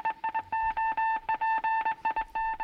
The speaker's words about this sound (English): Cue RKO beeps. There it is!